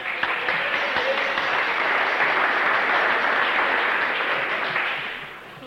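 A crowd applauds steadily for several seconds, a dense wash of many hands clapping at once, holding an even loudness before tapering off at the end.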